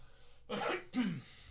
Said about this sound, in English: So hold on. I'm going to cough.